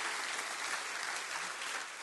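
An audience claps hands in a steady, dense wash of applause, loud and continuous throughout with no distinct individual claps standing out and no voices over it.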